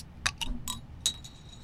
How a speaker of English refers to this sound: Would you mind, I'm going to pop the top on this since we're talking beer here.